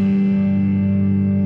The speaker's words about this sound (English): I love that little echo they put on the end of the song there. That's so fun for me.